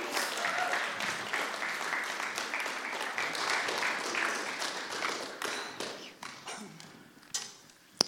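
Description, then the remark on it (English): A crowd applauds steadily to welcome speakers up to give an update on the Little Sparks baby and toddler group, a dense patter of many hands clapping at moderate loudness, gradually thinning out toward the end with a few scattered claps and a sharp final tap. “You give them a clap on the way up.”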